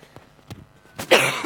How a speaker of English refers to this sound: I just don't want to blast you with my cough.